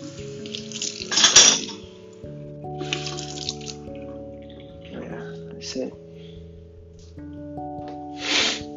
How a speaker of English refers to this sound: So I here I am right now washing dishes.